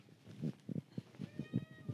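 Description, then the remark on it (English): A cat meows repeatedly in short, insistent bursts, about eight quick calls in a steady rhythm, moderately loud, with no talking over it. “What's wrong with the cat?”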